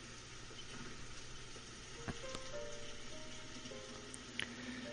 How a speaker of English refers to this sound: Oh, it's raining again.